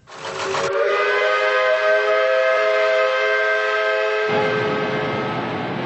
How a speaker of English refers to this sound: We see a smoky factory, and its whistle blows, telling workers it's time to clock off.